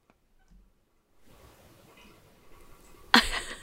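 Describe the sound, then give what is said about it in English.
A radiator bubbling and gurgling: a soft, irregular watery churn starts after a quiet moment, builds steadily, and ends in a sudden louder hiss-like surge. No one speaks. “So, can you hear the radiator bubbling?”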